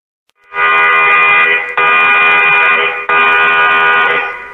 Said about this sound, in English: And that's when the general alarm went off, which sounded something like this.